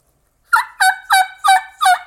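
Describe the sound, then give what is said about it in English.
Five quick, evenly spaced yelps from a dry-reed turkey call whose reeds have not been separated, thin and high-pitched with clear tonal bands and no raspy buzz because the reed is not vibrating, sounding alone without any talking. “The reed's just not vibrating to get that rasp, so it's just all high pitch stuff.”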